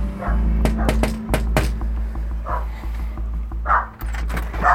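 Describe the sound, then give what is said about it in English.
A dog named Booker barks at a visitor arriving at the door of a semi-detached house in Thompson: a quick cluster of sharp, loud barks, followed by a few scattered yips and whines, all over a steady low hum. “What's your dog's name?”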